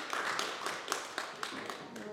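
A crowd claps together in a steady rhythm, sharp beats landing roughly every quarter second over a dense wash of scattered hand claps, moderately loud throughout.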